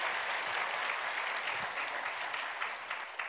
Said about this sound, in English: So can we give them a round applause one more time? 다시 한번 박수로 격려하겠습니다.